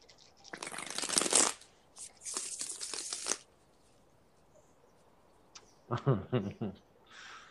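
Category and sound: household object, shuffling cards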